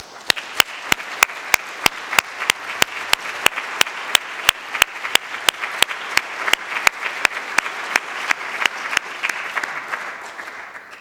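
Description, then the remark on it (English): An audience in a church applauds its own community steadily for about eleven seconds, a dense wash of clapping with a sharp, evenly spaced beat of louder claps running through it from start to finish. “Actually, let's give a round of applause for this community right here.”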